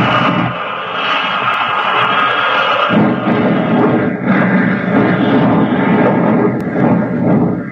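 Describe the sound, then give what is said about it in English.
A loud airplane engine over the wheat fields of Kansas roars, sputters and coughs unevenly as oil sprays back along the fuselage, then rises into a sustained, strained whine as the plane dives toward the ground, with no voices. “Suddenly, the motor sputters and coughs. The spray of oil whips back along the fuselage. With an angry whine, the gallant plane dives toward the ground.”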